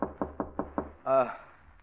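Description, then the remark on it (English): Five quick, evenly spaced knocks on a bedroom door, fairly loud, followed by a brief call from a voice. “get into bed before Grace is at the door”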